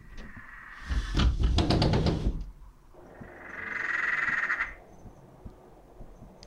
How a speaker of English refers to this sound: For about 4 months now, as soon as the sun comes down, my whole neighborhood absolutely erupts in frog calls. Let me open the window real quick.